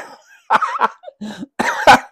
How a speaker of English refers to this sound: Oh man, my laughter's bringing out my cough.